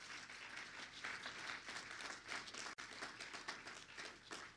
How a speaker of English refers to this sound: I believe that. If you believe that, why don't you clap your hands right now?